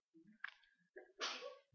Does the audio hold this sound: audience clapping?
no